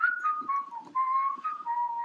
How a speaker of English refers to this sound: I can whistle good.